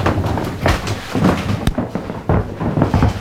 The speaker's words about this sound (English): Come with us. Lead on. Into a really fantastic, creaky floorboard. Yes, a real Tudor room now.